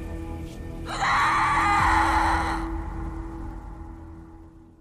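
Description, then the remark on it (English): A loud, piercing scream bursts out suddenly and holds for nearly two seconds before breaking off, leaving a faint hum and dull background rumble behind it; heard at a house in Napa Valley on Halloween night, 2004. “The story she has for us tonight happened on Halloween night in 2004, when one house in Napa Valley was transformed into a real-life horror movie that began with a terrifying, blood-curdling scream.”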